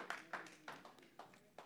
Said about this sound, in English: Come on, give a clap to God.